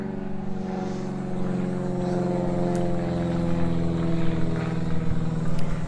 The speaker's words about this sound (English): Sorry about the airplane overhead.